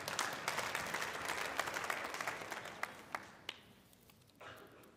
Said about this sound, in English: No, you all ain't clapping for me.